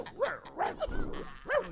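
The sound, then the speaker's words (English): A dog barks four times in quick, irregular bursts, a sharp yap or two mixed with fuller woofs, at moderate loudness with no one talking. “He done barked them.”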